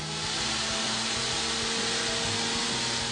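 A blender runs nonstop, giving a loud, steady whirring roar with a low, churning rumble underneath as it purees a sauce seasoned with white vinegar and xanthan gum until smooth, with the seeds completely blended in. No one speaks.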